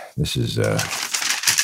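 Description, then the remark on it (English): Paper being crumpled and tossed out: a short burst of dry crinkling and rustling with a vocal sound mixed in at the start, fairly loud throughout the brief moment. “Okay, I got to throw out all this paper.”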